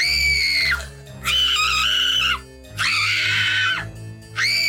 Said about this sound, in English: Girls are screaming. One girl is screaming.